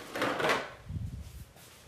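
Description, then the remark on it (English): A wooden cabinet door swings open with a broad scraping rustle, followed by softer low knocks and shuffling as a paint box is grabbed and lifted out of the cabinet, with no voices. “Open the door. It's back. Out the door of the cabinet. Grabbing the paint box.”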